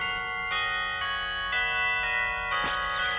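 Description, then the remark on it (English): Christmas church bells in a song ring loudly in a steady rhythm, a new chime roughly every half second, their rich tones overlapping and sustaining, before a swooping, shimmering sound rises at the end. “Christmas bells, those Christmas bells.”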